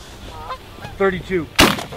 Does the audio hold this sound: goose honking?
yes